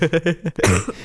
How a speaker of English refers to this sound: So tonight. I would get over this cough.